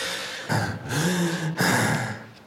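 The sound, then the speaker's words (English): A witness imitates for a jury the labored, raspy breathing of a sick woman as her son had described it: two long, strained breaths with rough, wheezy rasping, separated by brief pauses, fairly loud and alone without any talking. “Can you demonstrate for the jury how David demonstrated to you his mother's breathing?”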